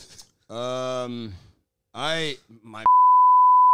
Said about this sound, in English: Well, shouldn't have said that. No. Well, you can beep it out.